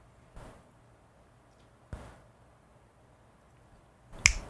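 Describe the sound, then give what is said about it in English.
Three crisp finger snaps separated by quiet pauses, the first two light and sharp, the third noticeably louder and brighter. No voices accompany them. “Thanos snapped.”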